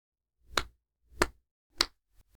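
A single person claps three times at a slow, even pace, each clap sharp and close, followed by two much fainter taps at the end.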